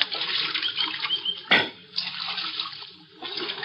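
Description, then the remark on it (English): Steady water splashing and trickling at Little Creek around noon, with one sharper splash in the middle and a brief lull near the end, as riders who have climbed down from their horses get a drink of the creek water. No voices. “About noon, we reached Little Creek, and Falk's trail gave out.”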